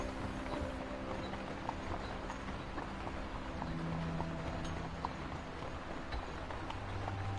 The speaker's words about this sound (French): Leur démarche parfaitement orchestrée, compose une mélodie à chaque fois que leurs sabots foulent le sol. Le rythme est régulier. Il résonne autour de vous.